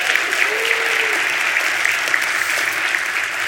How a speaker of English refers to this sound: Let's give him a round of applause too.